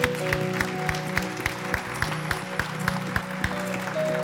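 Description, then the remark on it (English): An audience at a morning church service applauds a man who raised his hand to accept Jesus, with steady, rhythmic claps landing roughly three or four times a second over sustained low organ-like chords. No one speaks. “We give him applause this morning.”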